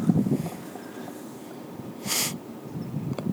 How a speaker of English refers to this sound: Pardon the heavy breathing.